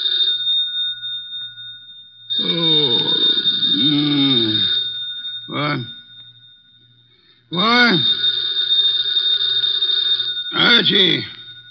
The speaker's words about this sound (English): The phone.